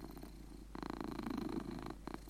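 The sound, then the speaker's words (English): A cat named Jarvis purrs steadily while lying on a person in bed, a soft rumbling drone that swells and pulses rhythmically with each breath, with no voices or other sounds. “Oh, he sounds pretty happy. That's a great purr.”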